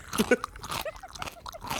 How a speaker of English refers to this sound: I know I listened to it. It's annoying sounds, loud eating. Now that's a pickle if I've ever heard one. Like, it's good. I mean, I know I listened to it for a little bit, but this like... This is fucked up. Who's it by? Chewing pickle. Sounds.